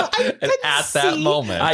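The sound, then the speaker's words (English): A woman gives a couple of sharp, short coughs just as a countdown to start a show ends, then they give way to drawn-out, voiced laughing sounds that carry on at a steady, moderately loud level. “Listeners, I gave her a countdown to start the show, and she coughed right on number one.”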